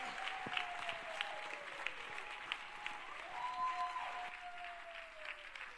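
Sustained applause from a large audience, a dense steady patter of many hands clapping at an even level, with a faint wavering tone running underneath.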